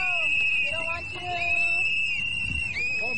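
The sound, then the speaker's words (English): Shrill whistles blow continuously over a noisy outdoor crowd gathered to greet Kamala Harris, one steady piercing tone with other whistles rising and falling around it, loud, with shouting and chatter underneath. “And the whistles end pretty soon, guys.”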